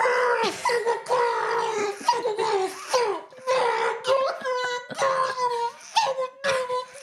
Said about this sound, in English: Screaming into a pillow can provide a release without disturbing others